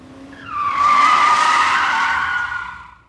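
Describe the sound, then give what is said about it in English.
A loud, sustained screech of car tires skidding on pavement as a car locks up its brakes, rising and holding for about three seconds before tapering off, with no voices present. “I was driving along, and all of a sudden, the car in front of me locked up their brakes.”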